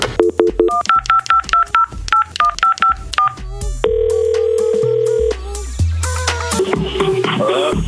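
A rapid series of touch-tone beeps as a phone number is dialed to call a contest winner from Dirty Bird, paired tones in quick rhythm, followed by a steady tone, a ringing pattern and then a noisy line connecting.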